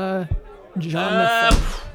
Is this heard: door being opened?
yes